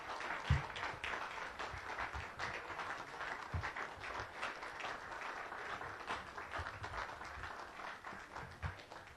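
Sustained applause from a club audience after a guest speaker's talk, a dense, steady patter of many hands clapping at moderate loudness throughout, with a few sharper individual claps standing out and no voices.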